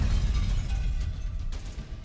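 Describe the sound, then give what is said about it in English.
A deep, sustained explosion rumble dominates the low end, with crackling debris and a couple of sharp bursts near the end, loud and steady with no voices. “The camp killers give the chaos their backs, walking away just as an explosion lights the skies.”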